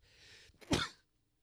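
sneeze

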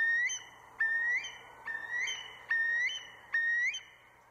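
curlew call

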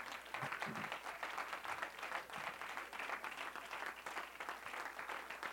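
audience clapping hands

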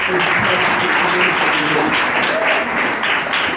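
audience clapping hands

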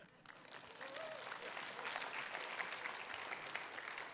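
audience applause

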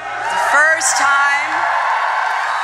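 crowd cheering and applauding

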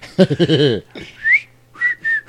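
person whistling a tune

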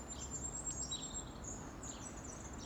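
birds chirping and singing

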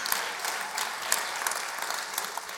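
audience clapping

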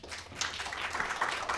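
audience applause

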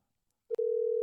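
telephone call ringing tone

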